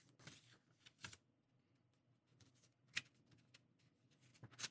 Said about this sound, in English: I'm actually, you might hear pages turning. I'm looking for his cousin's name.